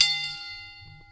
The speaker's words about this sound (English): And like, I'm gonna ring the bell after this very moment, because again, here comes a quote,